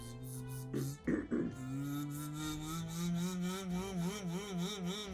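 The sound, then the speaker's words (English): A voice imitates a robot's machine sound, not bees, with a loud, steady, buzzing drone, broken by a couple of short sputters early on, then wobbling up and down in pitch toward the end. “Well, I wasn't trying to go for the bee sound, I was trying to go more with the machine sound.”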